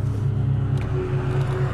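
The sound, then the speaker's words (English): A car engine rumbles steadily while driving up to highway speeds in the morning, a loud, continuous low-pitched drone with faint higher whine and road noise, no voices. “Stick around as I make my way up to highway speeds.”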